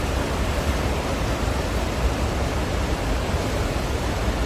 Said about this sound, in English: I'm glad I didn't choose last night to film that English lesson under a bridge. The falls were really raging.